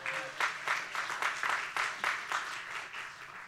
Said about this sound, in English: Yep. You guys are dead this morning. Come on, clap your hands a little bit.